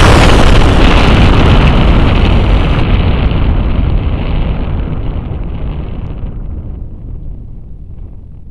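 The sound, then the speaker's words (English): Planet Earth explodes in a massive explosion that roars out as a dense, thundering blast of rumbling noise, sustained for several seconds before slowly fading, its crackling upper edge dying away first. No voices are heard. “This is the way the world ends. Not with a whimper, but with a bang.”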